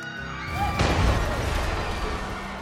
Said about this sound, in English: Eventually, this massive accumulation became a nuisance in a number of ways, including the occasional figure crashing to the ground during worship services.